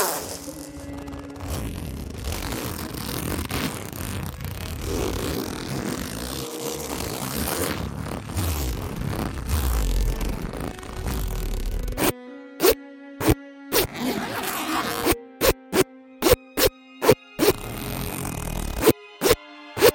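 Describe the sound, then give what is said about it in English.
A zipper rasps along clothing as a man zips up another person's garment while holding a drink, first in a long, steady scraping pull, then in a quick series of short, sharp zips, with no voices. “I can hold a drink in one hand and zip you up with the other.”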